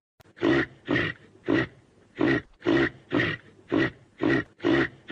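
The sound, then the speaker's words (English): A reindeer gives a steady series of about ten deep, raspy grunts, each short and loud, repeating at a regular rhythm roughly twice a second with no talking. “Let's hear what a reindeer sounds like.”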